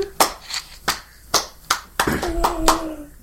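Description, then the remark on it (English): Slow, deliberate clapping: about eight sharp, crisp claps at a steady, unhurried pace, with a faint tonal hum creeping in under the last few claps. “Golf clap on with a slow clap.”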